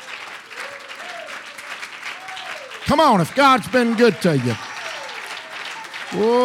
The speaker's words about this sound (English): Give the Lord a real good hand clap of praise.